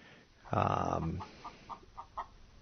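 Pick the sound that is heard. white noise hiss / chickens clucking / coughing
chickens clucking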